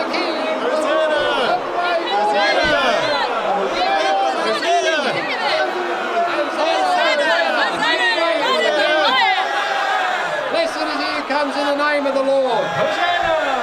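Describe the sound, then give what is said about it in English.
A large crowd in Jerusalem clamors nonstop as Jesus enters the city, many voices overlapping into a loud, steady roar with scattered rising and falling shouts breaking through the din. “A renewed roar rose from the crowd.”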